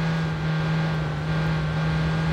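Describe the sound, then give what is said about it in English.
A steady, droning video game car engine hums at a constant pitch for a couple of seconds, loud, with no speech over it. “All right, this car has really good turning.”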